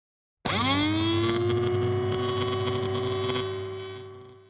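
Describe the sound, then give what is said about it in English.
A dentist's drill spins up fast, then holds a loud, steady whine with a buzzy, harmonic-rich edge for about four seconds, easing off slightly at the end. No one speaks. “Dentist drills might make a loud sound”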